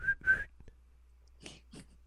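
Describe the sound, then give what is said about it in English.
A voice mimics the tweet of a giant whistle with two quick, shrill tweets, followed after a short pause by a couple of soft, breathy puffs. “I was like, why does she have such a giant whistle? You know, she's gotta go...”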